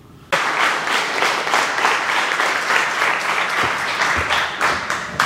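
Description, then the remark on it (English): A church audience stands and bursts into sustained applause welcoming a visiting pastor after a brief quiet moment, many hands clapping in a dense, steady roar that holds loud for several seconds without talk. “Would you just stand up right now and give him a round of applause?”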